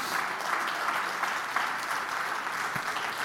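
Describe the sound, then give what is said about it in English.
An audience claps hands in praise during a church service, a dense, steady wash of many overlapping claps at moderate loudness, with no distinct voices standing out. “Clap your hands and praise Him right now.”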